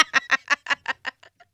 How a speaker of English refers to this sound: See, these ducks, I open my back door and they're there. Like, we are, I am. The duck man? I'm saying I'm in the family structure. They don't even follow the mother around anymore. They follow me around.